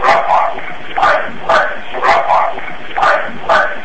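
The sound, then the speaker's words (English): A dog barks repeatedly in a quick, steady rhythm, about eight short yapping barks over a few seconds, fairly loud and slightly muffled against a faint background hiss, on an EVP recording made at the Tenney Gatehouse museum of the Boone Historical Society when no animals were present. “That's either it's either a definitely sound of a dog barking”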